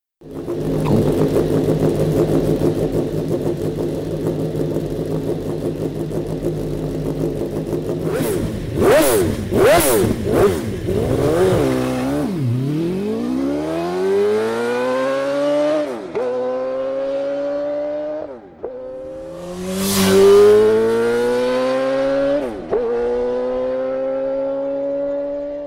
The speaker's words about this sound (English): it's something called PGM, and it's a V8, but it's essentially a pair of Yamaha R1s sort of sandwiched together in a custom fashion, or I should say two banks of Yamaha R1s made into one engine, and the sound of this thing is just unreal.